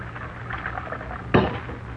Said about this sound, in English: I'll pour the coffee.